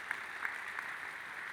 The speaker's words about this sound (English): You're clapping. You're clapping. You're clapping.